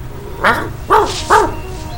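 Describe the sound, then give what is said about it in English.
A good-looking stray dog with no collar or license tag lets out three short, sharp barks in quick succession, clear, over a low steady background rumble with no talking. “Well, did you see that? Smart dog.”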